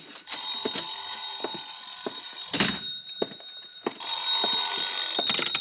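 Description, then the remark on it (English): A telephone bell rings in two long, rattling bursts separated by a short pause, with a few dull knocks and thumps mixed in. No one speaks. “Oh, sorry, I think that's my phone.”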